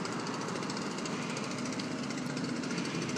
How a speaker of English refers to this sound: You might be able to hear him in the distance here. That is a leaf blower employee.